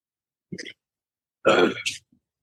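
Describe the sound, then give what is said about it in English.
A quiet throat clearing: a short guttural rasp, a brief pause, then a longer, harsher rasp that trails off. No one speaks. “Let me clear my throat here a little bit.”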